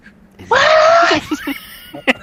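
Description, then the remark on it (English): A person lets out a loud, strained yell lasting well over half a second, piercing, followed by a few short, quieter vocal bursts and a sharp final cry. “Don't yell.”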